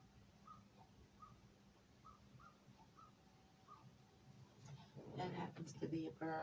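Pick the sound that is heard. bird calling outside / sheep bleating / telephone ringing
bird calling outside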